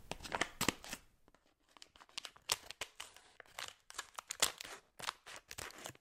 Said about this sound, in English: Got a pair of scissors handy, so we can just snip this right open.